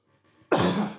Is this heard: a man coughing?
yes